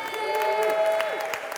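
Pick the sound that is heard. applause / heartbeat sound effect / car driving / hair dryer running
applause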